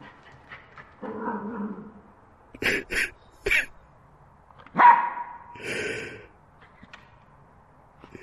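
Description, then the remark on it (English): A dog barks happily in short, lively bursts, about five or six yaps and woofs spaced irregularly over several seconds, clear with no one talking. “Sounds happy. Younger than he sounded in years. Who's a happy puppy?”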